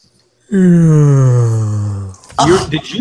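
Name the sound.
exaggerated yawn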